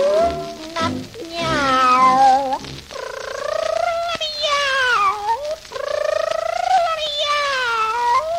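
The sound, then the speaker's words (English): Long, drawn-out cat meows, loud, rising and falling in pitch in several wavering cries. Low tones accompany the first few seconds, then the meowing continues on its own. “Meow, meow, meow, my pretty kitten. Meow.”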